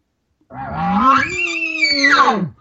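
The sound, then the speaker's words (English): A voice imitates a bull elk's challenge bugle, given as about a level 5 challenge to a bull elk, telling him to stay back. It is a sustained, rising, whistling call with harsh grunting undertones, held for about two seconds before sliding down and cutting off. “as soon as he does, I'm going to give him about a level 5 challenge, telling him to stay back.”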